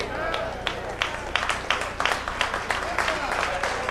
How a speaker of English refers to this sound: That's that old sugar fast clap.